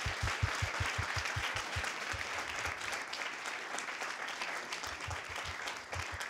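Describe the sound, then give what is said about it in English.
An audience at a City Club debate applauds the two debaters, a sustained dense wash of clapping at steady volume throughout, with a few low thumps early on and no speech over it. “And could we get another round of applause for”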